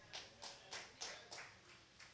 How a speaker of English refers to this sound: Not too many claps. That's okay.